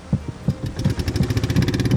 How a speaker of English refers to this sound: But before Blaza could doze off, the roar of an engine catches his attention. He looks out and sees a metal vessel approaching fast.